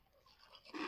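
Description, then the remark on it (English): A snack bag of Cheetos-coated popcorn is shaken briefly, a soft papery rustle and rattle that swells into a louder crinkly burst at the end. It's fairly quiet, with no voices. “You got to shake it up a little bit.”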